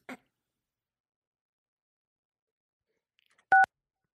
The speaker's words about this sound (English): Oh, what is going on? What? You're dialing the phone. How did I do that?